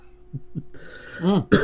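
A person coughs: a couple of soft throaty sounds lead into a rough, breathy cough and a voiced catch, then a final sharp burst.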